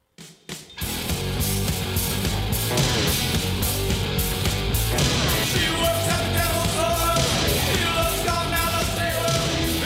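punk rock song playing

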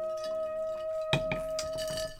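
glasses clinking

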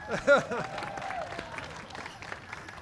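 audience applause

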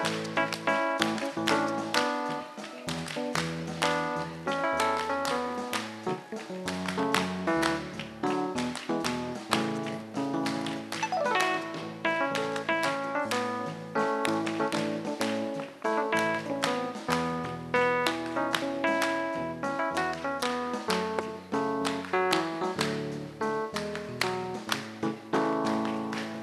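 audience clapping hands

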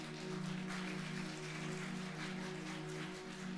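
audience applause

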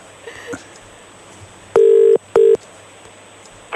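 telephone dialing

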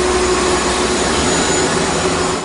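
vacuum cleaner sound effect

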